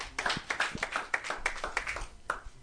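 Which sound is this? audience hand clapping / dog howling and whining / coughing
audience hand clapping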